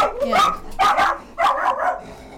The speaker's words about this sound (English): Hold on, my dog's killing a person.